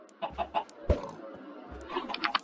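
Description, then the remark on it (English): A video game chicken clucks in short, quick bursts, three at first, then a low thump, then a few more rapid clucks near the end, fairly quiet with no voices. “Ooh, another egg. I think a chicken laid in the egg.”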